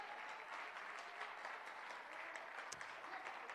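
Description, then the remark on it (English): An audience claps together in a dense, steady burst of applause that holds at an even loudness for the whole stretch, with no voices rising above it. “I'm talking to sons and daughters that will clap and agree with me this morning.”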